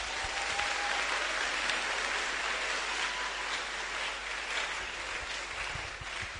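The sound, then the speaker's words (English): A crowd claps for Jesus steadily for several seconds, a dense, even wash of many hands with no pauses, holding a fairly constant loudness throughout with no voices standing out. “Give Jesus a mighty clap of it.”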